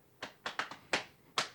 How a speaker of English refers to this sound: The front walk to the door. He knocks.